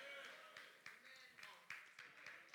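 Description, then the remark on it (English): Three scattered hand claps ring out sparsely and faintly over a low murmur of room noise rather than full applause, during a church sermon. “Thank you for that 3 claps.”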